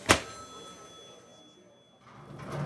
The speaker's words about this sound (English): In D.C., FedEx's efforts are paying off. A mailroom worker knocks on the door of Congressman Harold Ford Sr., a representative from Memphis.